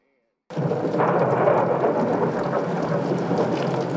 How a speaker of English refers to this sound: How do you like this weather, huh? Rain, damp, humidity.